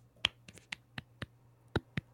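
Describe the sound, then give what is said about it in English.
A handful of sharp, light claps of brief applause, about seven of them spaced irregularly over two seconds, crisp against a faint steady hum, with no voices. “Yay, I got a little applause.”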